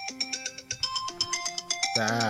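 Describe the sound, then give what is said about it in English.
A mobile phone ringtone plays a bright, rapid electronic melody of short repeated notes, loud, with a voice starting to talk right at the end; the phone is hooked up to headphones. “Yeah, sorry, my phone went off, and of course it's still hooked up to the, to my headphones, unfortunately.”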